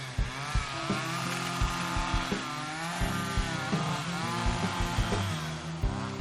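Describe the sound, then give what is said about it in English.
A chainsaw engine runs loud for several seconds, a steady buzzing drone punctuated by repeated short revving bursts, with no voices, used to clear downed trees. “Gonna have some steak and eggs and then clear all those downed trees with my chainsaw.”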